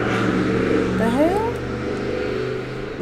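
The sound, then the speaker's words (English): A loud car engine rumbles steadily with low droning tones, its pitch rising briefly as it revs while crawling past at about 3 miles an hour, with a voice speaking over it. “Loud ass cars.”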